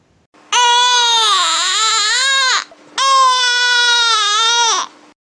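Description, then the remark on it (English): A colicky infant cries in two long, loud, strained wails, each lasting about two seconds with a wavering high pitch, separated by a brief gasp for breath. No one speaks. “And again, trying to avoid that colicky kind of cry is burping them more often.”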